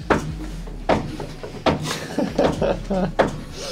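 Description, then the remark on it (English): Several sharp knocks on a wooden door, spaced irregularly, with a voice murmuring between some of the raps. “Where's that knocking coming from this time?”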